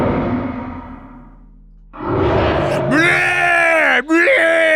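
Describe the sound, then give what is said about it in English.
A person lets out a loud, drawn-out 'alpha cry' that rises in pitch and wavers, following a fading low rumble, with a brief break before the cry resumes strong and sustained. “I scared it off with my superior alpha cry.”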